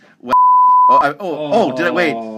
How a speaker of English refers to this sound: I'm going to have to beep that out later. You really? I'll beep it out for you.